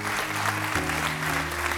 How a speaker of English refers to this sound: Clap, stomp, shout.